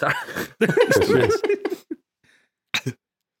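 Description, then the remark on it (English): A voice murmurs and vocalizes for a second or so, then after a brief pause comes a short, sharp, breathy sneeze burst, loud and sudden. “I was supposed to say next, but I sneezed it out.”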